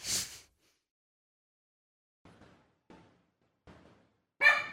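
A dog barks a few times, three soft, short barks spaced apart, then one sharp, loud bark at the end, with no talking.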